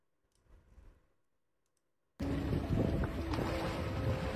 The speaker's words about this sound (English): Look at that. Hear that? First breath. And this thing's no joke. It's going, it's breathing. It's, sounds like a humpback whale. Notice fresh water as well.